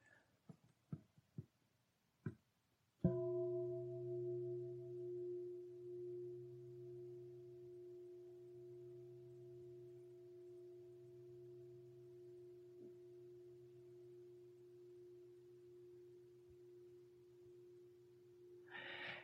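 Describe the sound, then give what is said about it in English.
After a few soft taps and clicks, a meditation bell is struck once for a listening demonstration, ringing with a steady low hum and clear overtones that slowly fade over about fifteen seconds. “I'm going to ring the bell and notice the moment when you first hear the bell and then what it's like to stay with that experience, to not skitter off into the next thing.”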